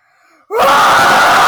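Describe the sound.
A person lets out a loud, sustained yell imitating a Bigfoot call, bursting in suddenly after a faint lead-in and holding a strained, harsh, wailing tone to the end.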